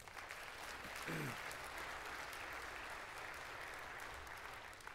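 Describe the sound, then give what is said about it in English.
An audience at a church celebration breaks into steady, sustained applause to praise the Lord, a dense wash of many hands clapping together for several seconds, with a brief voice cutting through near the start. “Let's give the Lord a hand, shall we?”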